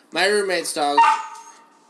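A dog, JJ, whines and cries indoors in a single drawn-out, wavering call lasting over a second, fairly loud, then trailing off into quiet.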